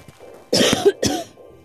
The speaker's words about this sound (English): I have to go because my cough is getting bad, and I need to take some Benadryl, so thanks for joining.